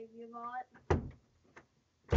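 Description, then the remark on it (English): A door opens with a solid clunk and a brief rattle, followed by a faint latch click and another sharp knock. A voice is heard briefly just before. “opened the door and then corrected me.”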